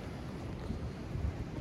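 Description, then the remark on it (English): A steady roar of solid pressure waves breaking over a river bar as floodwater pours out of the river system, heavy in the low end, with gusty wind buffeting the microphone and no talking. “And as you can see here, there's some pretty solid pressure waves pushing through.”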